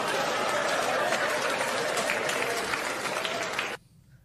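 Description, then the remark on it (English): Dense, steady applause from a crowd, a loud wash of many hands clapping at once that holds evenly for nearly four seconds, then cuts off abruptly. “Listen to the applause.”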